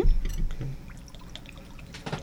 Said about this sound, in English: And it's everything is in the can. So you guys can see what it looks like. It looks mad. Like it pours in there.